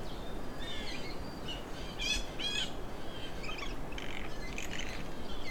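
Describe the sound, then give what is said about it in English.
A blue jay gives a run of odd, raspy croaking calls, several rough bursts in a row over a steady hiss of background noise, with no one talking. “Blue jays are mimics, so they do make some weird sounds sometimes.”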